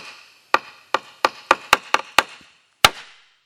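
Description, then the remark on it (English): A wooden board struck with a mallet as the call to meditation: eight sharp, resonant knocks that start slow and quicken, ending with a pause and one final loud strike that rings out. No voices. “This was the call to meditation.”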